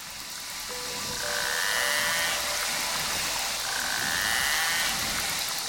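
Narwhal calls underwater: a dense chorus of high-pitched whistles and clicks, with two longer rasping buzzes rising out of a steady hissing wash. No one speaks.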